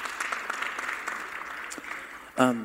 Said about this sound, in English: Yeah, let's round of applause.